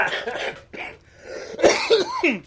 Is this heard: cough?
yes